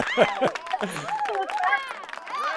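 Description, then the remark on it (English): A canned crowd reaction played in late as a sound effect: a burst of applause mixed with cheering and whooping voices, fairly loud and steady for a few seconds. “That was a delayed applause.”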